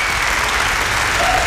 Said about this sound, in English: I can hear it coming down the track. No, that's clapping.